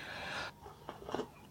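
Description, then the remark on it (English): A quiet, airy slurp as someone sips coffee poured through frothy milk, in a kitchen in the morning, followed by a couple of soft swallowing and cup sounds; no one speaks. “Quick sip of coffee.”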